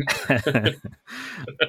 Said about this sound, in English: I had a cough. It was a cough. I wasn't laughing.